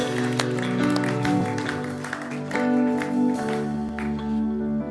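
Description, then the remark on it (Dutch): An audience applauds with scattered, irregular claps, blended with sustained instrumental music and some voices, the whole mix fairly loud and steady throughout. “Let's give God a big hand.”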